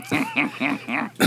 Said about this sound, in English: I believe he's put over here to cough on me for the next 30 minutes.